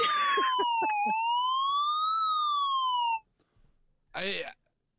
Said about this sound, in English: sound the alarm.